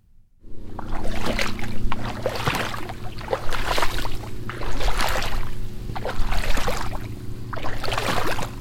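Footsteps slosh and splash through shallow water in a steady, unhurried rhythm, close by, over a constant low rumble in the background. No one speaks.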